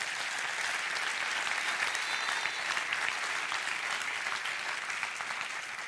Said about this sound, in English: Clap your hands and rejoice.